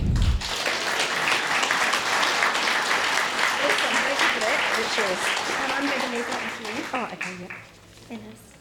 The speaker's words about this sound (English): So everybody give the lady in the blue hat another big round of applause.